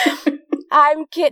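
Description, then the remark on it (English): Several quick coughs in a rapid burst, brought on by laughing, followed by a couple of longer voiced, breathy sounds like laughter trailing into more coughing. “I'm laughing so much, it's making me cough.”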